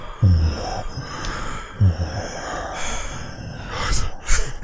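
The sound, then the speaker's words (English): Several people make heavy, exaggerated mouth-breathing noises into a microphone, with raspy huffs and gasps, two sharp bursts near the start, then continuous breathy noise. No one speaks. “How about we all make mouth-breathing noises into the microphone for a minute?”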